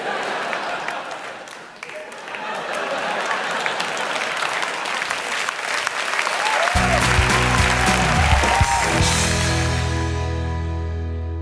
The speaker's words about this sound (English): Round of applause.